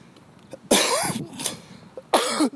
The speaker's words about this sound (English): That's a healthy cough. Truth is, I swallowed a bug, and I'm just trying not to think about it, because I think it might make me throw up, which is gross.